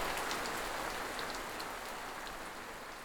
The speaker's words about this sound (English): Hail, friend! Over here, under the bridge. Come get yourself out of that nasty rain.